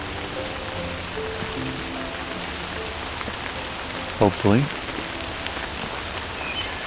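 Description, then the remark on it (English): Steady rain patters and hisses evenly as it starts to die down in a Carolinian forest, a soft continuous wash of drops on surfaces, with a person briefly speaking a single word partway through. “Rain is starting to die down.”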